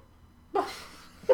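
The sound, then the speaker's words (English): A pug gives a short, breathy snort followed by a raspy exhale, then a brief grunting snuffle at the very end, not loud, with no talking. “God, I was gonna cut that out, but if that picked up, then just like... oh my god, that pug...”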